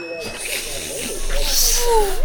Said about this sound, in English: Let's all pretend we're sipping a nice, warm, soothing drink, adventurer.